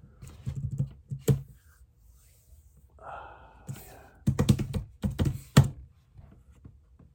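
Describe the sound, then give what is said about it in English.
Clattering keystrokes on a computer keyboard come in quick irregular bursts with short pauses, a few heavier key strikes standing out, and a faint murmur in the middle. “Alright, just making sure I spelled that correctly.”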